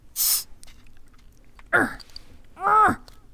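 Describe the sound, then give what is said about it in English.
A short sharp hiss bursts out, followed by two strained, effortful grunts a second apart, as someone struggles to get a beer open. “Yes, I have beer, and it was giving me problems opening.”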